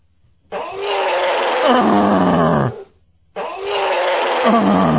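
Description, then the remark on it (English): A voice imitates the roar of Kong, the giant gorilla, in two long, loud, raspy bursts separated by a short pause, with no other talking. “I may miss Kong roar.”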